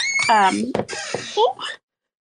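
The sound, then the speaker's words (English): A door creaks open with a loud, high, drawn-out squeak that bends in pitch, broken by a brief thump before the squeal resumes and quickly dies away. “Okay, my door's about to squeak really loud.”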